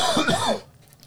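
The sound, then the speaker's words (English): A single short cough, fairly loud, with a rough voiced edge, lasting about half a second before fading into near silence. “I was just coughing.”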